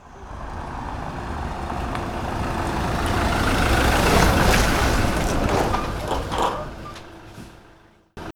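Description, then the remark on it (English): A pickup truck with flashing lights rumbles in, growing louder, then slides into a yard, slows and winds down to a stop, parking tight against a porch, with a few creaks and clunks as it settles and goes quiet. “I could tell he was about to give in and let us have the seance when a pickup truck, lights flashing, slid into the yard and parked tight to the porch.”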